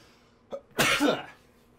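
A single sneeze: a brief sharp intake of breath, then one loud, explosive, hissy burst lasting about half a second, fading quickly into quiet with no talking.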